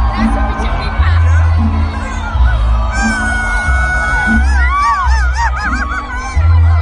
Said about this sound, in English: They're playing this shit karaoke, bro. Everyone thinks they can sing. It's EDC hilarious. Crowd is singing it.